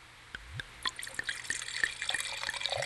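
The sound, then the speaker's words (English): Wine, a 2019 Rossi Ranch Grenache, pours into a glass, a gurgling splash with a few bright drips and rising glugs as it fills, steady and fairly quiet, with no voices. “Well, that did sound quite nice this morning. Sounds like a 2019 Rossi Ranch Grenache.”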